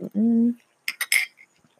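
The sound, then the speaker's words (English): Someone takes a sip of water: a brief low hummed tone, then three quick, bright clinks of a glass or cup being handled and set down. “I'm taking a sip of water before I get into the next one.”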